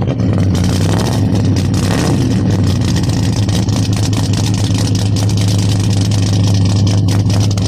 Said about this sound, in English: Would you start it up for us? Sure. All right, here we go. So we got a four barrel cooking, and let's get to the back and listen to the rumble.